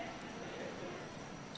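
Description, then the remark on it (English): Soft, continuous papery rustling as many Bible pages are turned at once by an audience finding Acts 21, a faint, steady shuffle with no distinct single flips standing out. “I hear the pages turning.”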